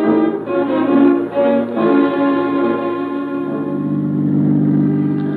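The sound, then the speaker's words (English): A car engine hums steadily, its pitch shifting slightly as the vehicle pulls away and keeps driving, with a low continuous rumble throughout and no voices. “Outside, we ease into her car and drive off.”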